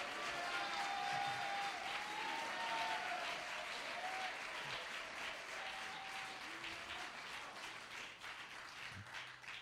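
A large audience claps steadily and loudly for about ten seconds, a dense roar of hands with scattered voices shouting and calling out, no single speaker standing out.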